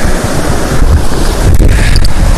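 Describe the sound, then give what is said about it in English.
A steady, loud roar of rushing water from a waterfall, heard from above it, broad and unbroken, with a slight windy rumble and no voices. “All right, I'm above the waterfall.”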